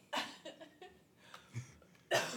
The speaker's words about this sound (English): I love how everybody's listening to you cough right now. Sorry. Sorry.